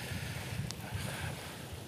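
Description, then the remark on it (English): Steady, loud wind roars over rushing sea water, with a deep low rumble and a constant wash of noise throughout, and no voices. “The wind has really picked up. Probably you can hear already the sea a little bit more now.”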